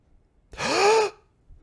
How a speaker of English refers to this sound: Yeah, me too. We're breathing.